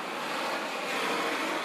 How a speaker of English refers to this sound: And y'all know I'll be outside going to get my coffee. Podcast very different because you're going to hear the streets and trucks and dirt bikes and stuff like that.